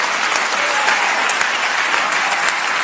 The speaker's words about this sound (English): Everybody's applauding in here.